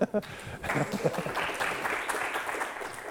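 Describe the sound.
An internet security lecture audience breaks into applause as the researcher and PhD-student assistants stand up, a steady, dense patter of many hands clapping that holds at a moderate level for the whole moment, with a brief voice at the very start.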